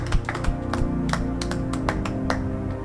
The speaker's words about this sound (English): Give a clap offering to the master while you take your seat.